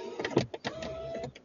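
A car window rolls down with a few clicks and thumps, then a steady mid-pitched motor whine lasting about half a second before it stops.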